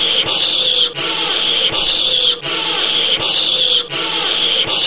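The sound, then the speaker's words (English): A loud, harsh hiss repeated four times in a row in quick succession, each burst lasting about a second with only a brief dip between them, forming a steady mechanical loop. “I just did the hissing four times in a row.”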